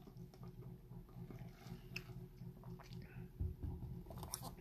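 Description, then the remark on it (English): A quiet sip of an iced coffee drink, a Dunkin' Donuts sugar plum macchiato, with soft wet mouth sounds and faint clicks over a steady low background hum; nobody speaks. “Let's have another sip real quick.”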